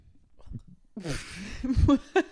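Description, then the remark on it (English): A short burp rumbles out amid soft breathy vocal noises, with a brief throaty sound at the very end. “I just like burped, and I felt weird about it, because I don't Why?”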